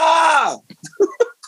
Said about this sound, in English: Louder. Let's break out of this. Louder. Yell.